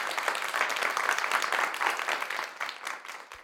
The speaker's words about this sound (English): You know what? This film, we'll give it a good clap, a good applause. How about that? Yay. Yay. Applause.